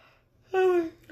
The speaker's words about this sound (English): I really have to yawn. Then do it. Do it!